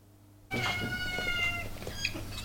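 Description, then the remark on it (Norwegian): Four cats meow while sniffing after food on a stove and walking around a man's legs, their high, drawn-out cries overlapping almost continuously for about two seconds after a brief quiet start, over a faint low background hum. “De fire kattene snuser etter maten han har på komfyren”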